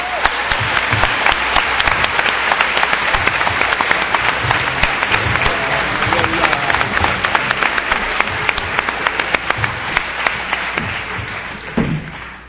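Sustained audience applause, a dense wash of many hands clapping steadily and loudly for about twelve seconds, with a few sharper individual claps standing out before it tapers near the end.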